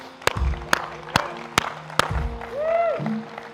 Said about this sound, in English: Can we just give a shout out and a clap for the Lord and all that God has done?